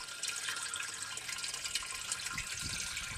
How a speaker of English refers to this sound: By an old mill pond down a rural road, a tiny well sits under a red-pitched roof. Clear, cold water pours out of a pipe into a metal can.